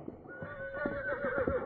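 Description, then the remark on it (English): A horse whinnies in a drawn-out, wavering neigh lasting under two seconds, moderately loud, with faint rhythmic thuds beneath it and no one speaking. “Get his horse.”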